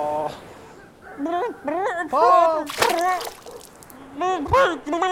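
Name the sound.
dog splashing in water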